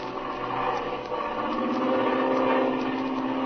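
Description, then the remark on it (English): A steady engine drone hums continuously at an even, moderate loudness, with a rough, throbbing texture like a propeller airplane cruising in flight over a mesa, and no voices over it. “And now, we find them cruising over the mesa.”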